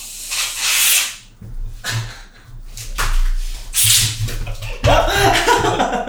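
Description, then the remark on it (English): Two bursts of loud aerosol whipped cream spray hiss, separated by rattling and handling noises as the whipped cream can is shaken, ending in a rougher spray and fumbling. “I'm going to flip it, slap it, shake it, dip it, whip it, baby.”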